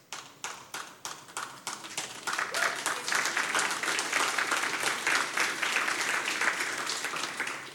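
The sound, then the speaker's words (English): A church audience claps during a sermon, beginning with a few sparse, separate claps that quickly swell into steady, dense applause lasting several seconds, fairly loud throughout with no talking. “Some of you didn't clap like that was very convincing of you.”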